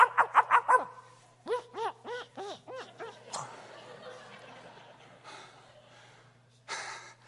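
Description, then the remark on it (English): A muzzled dog yelps in quick, strained bursts: a rapid string of high whimpering cries, a short pause, then another stuttering series, trailing off into breathy, muffled rustling and a faint hiss. “You ever seen anybody put a muzzle on a dog? He's yelping.”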